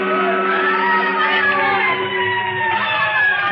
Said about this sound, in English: With Nick Segedin, it was the lighted match, the licking flame, and of course the roar and scream of the fire engines racing through the city streets.